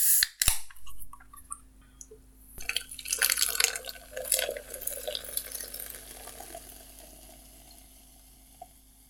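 A crisp metallic can tab snaps open, then a drink pours and fizzes in a steady stream with faint drips and bubbling, fairly quiet, with no one speaking.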